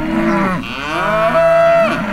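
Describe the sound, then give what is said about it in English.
A cow moos loudly, a long, drawn-out low call whose pitch dips and then swells again over about two seconds, with no talking. “Cows mooing.”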